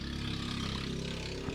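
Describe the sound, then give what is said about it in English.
A loud moped engine drones steadily with a buzzy, harmonic hum, its pitch shifting slightly as it passes by; no one speaks. “It's got to be a moped. That loud, obnoxious thing that's clearly unlicensed.”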